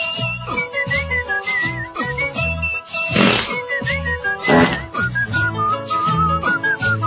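Someone whistles a bright, bouncy melody over a steady instrumental backing with bass and rhythm, the whistled notes clear and prominent throughout, with no talking.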